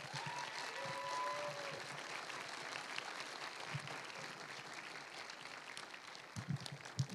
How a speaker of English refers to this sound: so if you give her a round of applause, please.